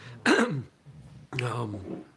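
Two loud bursts of wet, phlegmy throat clearing and coughing from someone who has been sick, the first harsh and rasping, the second longer and gurgly, with a brief low rumble between them.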